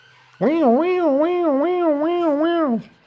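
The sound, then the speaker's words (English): A voice imitates a European siren going by: a steady, loud wailing tone that rises and falls in pitch about five times over a couple of seconds, then stops abruptly. “Oh, you hear that? You hear that European siren going by?”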